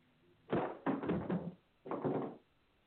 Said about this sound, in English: Wait, who's that? Who's that? Who's knocking on the door? Hello?